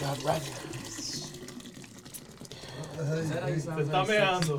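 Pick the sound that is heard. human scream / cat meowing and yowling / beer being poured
beer being poured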